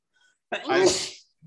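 A single loud sneeze bursts out with a sharp breathy onset and fades over about half a second, followed by a brief low vocal sound.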